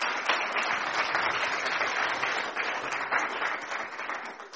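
A crowd applauds a guest speaker steadily, a dense wash of many hands clapping at once with a few sharper claps poking through, holding a fairly even loudness for several seconds without any voices.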